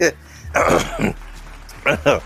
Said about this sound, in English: Let me clear my throat, right?